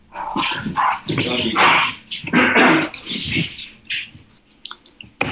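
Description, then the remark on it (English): Two dogs bark, yip and whine at the speaker's feet in a rough, overlapping scuffle, with short bursts of noisy commotion and a few sharp cries trailing off at the end. “I'm just going to let these two dogs out. Yeah, please. Go for it. Yeah. They're killing each other at my feet.”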